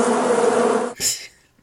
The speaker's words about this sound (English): Then he pulls out a Diet Coke. So the movie goes up. And says, my favorite drink, cracks it open, and takes a nice long sip. But what comes out? Not Coke, bees.